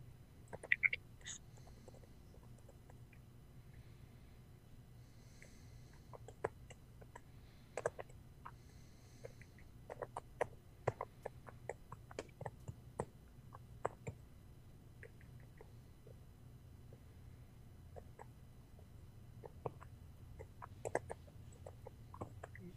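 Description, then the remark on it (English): Keyboard typing: a quick, irregular patter of soft clicks in bursts, quiet, over a low steady hum, with no one speaking. “I was typing because this movie's so boring.”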